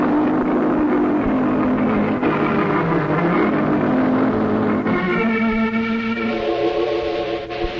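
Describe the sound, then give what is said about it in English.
A car with bad brakes roars loud, its droning engine pitch climbing as the vehicle accelerates hard and speeds away in a hurry, with no voices. “Golly, he's certainly in a hurry. With them brakes the way they are, he'll kill somebody if he ain't careful.”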